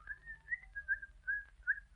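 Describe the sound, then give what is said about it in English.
A man whistles a cheerful, bouncy tune alone while coming down the stairs, a string of bright sustained notes gliding up and down, with a low rumble underneath. “Down the stairs comes the happily demented Mr. Van Dyke, whistling cheerfully.”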